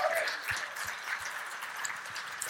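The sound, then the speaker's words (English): A crowd applauds steadily, many hands clapping in a dense, even patter that stays at a constant moderate loudness throughout, with a few faint voices mixed into the clapping, giving a round of applause to thank the social media, communications and media teams. “Can we just give them a round of applause again?”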